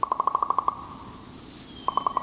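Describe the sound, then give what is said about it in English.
A common raven in Oregon's Mount Hood National Forest gives a rapid series of hollow, knocking notes, about eight in quick succession, then falls silent before a shorter burst of four. A thin, steady high-pitched whine runs in the background. “In Oregon's Mount Hood National Forest, far from Edgar Allan Poe's birthplace in Boston, Jeffrey Keller recorded this common raven's call of Nevermore.”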